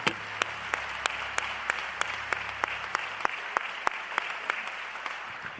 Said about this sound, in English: And when you're seated, just clap your hands unto the Lord, because he's a good God.